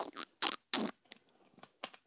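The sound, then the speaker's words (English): A voice imitates water with wet, squelchy mouth noises: three loud gurgling bursts, then a few fainter clicks and slurps trailing off, with no speech. “It's a water noise with my mouth.”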